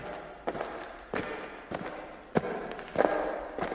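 Running footsteps strike in a steady, brisk rhythm, about six thudding steps that grow slightly louder toward the end as they approach, with no one speaking.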